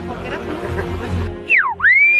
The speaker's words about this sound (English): This was my name whistled